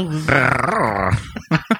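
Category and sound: animal, dog growling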